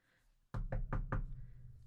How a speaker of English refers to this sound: A knock sounded on the glass panel of the laboratory door, and a clerk stuck his head in.